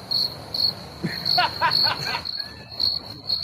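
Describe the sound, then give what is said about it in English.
Crickets chirp in a steady, high-pitched pulsing rhythm throughout, moderately loud, with a brief voiced sound rising over them near the middle. “It's not Scottish crickets unless they're like, ah, ah.”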